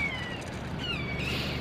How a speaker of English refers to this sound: Oh, that was actually the Kia calling. Probably calling his mates. There's another one coming in. Now they're chatting to each other, that's lovely.